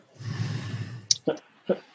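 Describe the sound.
A long, heavy, rasping breath drawn out for about a second, fairly loud, sounding like the character Grinlock about to die, followed by a sharp click and two short, breathy voiced bursts.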